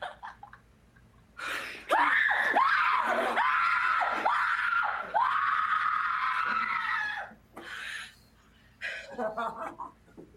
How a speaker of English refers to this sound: I don't know, but the scream was amazing. That's some Scream Queen shit right there. Yeah. That was a fantastic scream. Yeah. I thought she was legit getting like hacked to death.